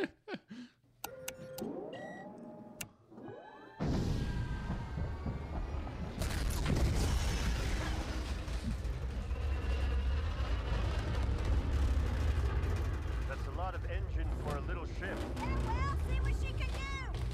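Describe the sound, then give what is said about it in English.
A hot rod V8 engine starts up: a few clicks and whirring cranking, then it catches with a sudden loud, deep rumbling roar that holds steady, rising and falling slightly as it idles and revs. “It was a hot rod N1.”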